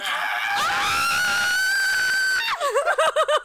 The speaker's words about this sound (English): I didn't know the bushes could scream.